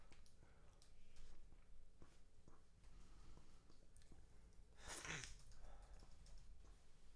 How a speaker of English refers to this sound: What are you typing? A tweet. What are you writing?